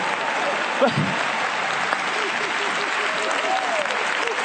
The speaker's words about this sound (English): All the smart people ain't clapping. Don't clap too loud. Somebody might think you're dumb.